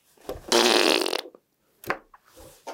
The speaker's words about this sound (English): Joke, how do you make a custard slice? Fart sound.